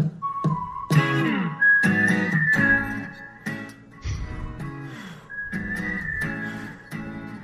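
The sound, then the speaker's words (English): A man whistles a tune in long, sustained notes, heard fairly clearly alongside other low, droning harmonic sounds, with short pauses between phrases. “Whistling? I think. Is that him whistling?”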